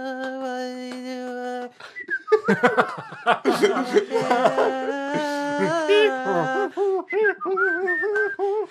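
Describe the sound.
A person whistles a wavering, melodic tune, starting with a long held note, then breaking into shifting notes mixed with snickering laughter.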